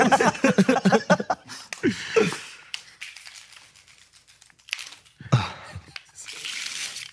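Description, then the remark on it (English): A deck of playing cards is shuffled in quick bursts of crisp, papery riffling and flicking, pausing in a quieter stretch before another burst of rustling picks up, with a few brief vocal sounds mixed in. “You shuffle it. Shuffle it till you're ready.”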